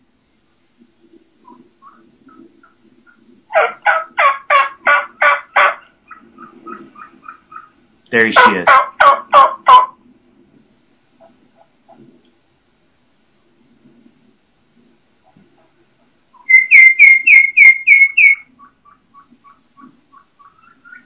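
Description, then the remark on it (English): Wild turkey hen giving fast, very high-pitched, almost flute-like calls in three quick bursts of rapid repeated notes, clear, with a brief spoken remark between them. “Okay, now those are the kikis coming back, but you can hear that hen just out there. So it's high, very, very high pitched, almost, you know, flute like or almost songbird like, and very, very fast paced.”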